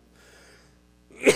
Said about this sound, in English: Excuse me for coughing.